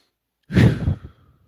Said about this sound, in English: Breathing deeply.